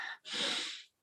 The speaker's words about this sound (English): So if you would join me, let's breathe in through the nose and out. And breathing in